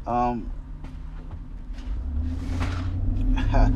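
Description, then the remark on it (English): Inside a moving car, a steady low engine rumble carries on as the driver steps hard on the brakes. A short scraping slide follows as Shelby the dog slides on slippery new WeatherTech floor mats. A brief voice is heard at the start. “I had to step on the brakes and Shelby slid.”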